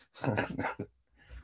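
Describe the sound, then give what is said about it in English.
A loud burst of coughing, one long harsh cough followed by a short second hack, then quiet breathing-like noise. “Bloody hell, sorry, I keep coughing.”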